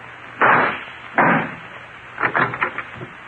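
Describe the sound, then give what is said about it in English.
Two loud, sharp gunshot blasts about a second apart shoot out the lock of a locked closet door, followed by a quick burst of smaller clattering knocks as the lock gives way and the door rattles. No one speaks. “Then shoot out the lock.”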